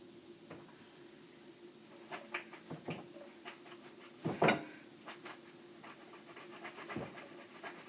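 Wet potato chips are shaken in a strainer over a sink to drain the water off, giving a series of short, irregular rattling and rustling bursts with one denser shake midway, over a low steady hum, with no one talking.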